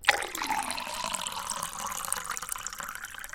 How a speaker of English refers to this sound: I did pull a pouring sound for some reason.